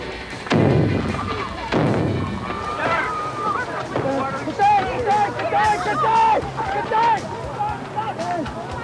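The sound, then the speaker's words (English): Two heavy grenade blasts boom in quick succession, each with a rumbling decay, thrown by a man into a huge crowd of mourners at a funeral, followed by the crowd shouting and screaming in panic. “Unknown to the huge crowd of mourners, a man had infiltrated them, and as a coffin came to rest, he threw the first of his deadly grenades.”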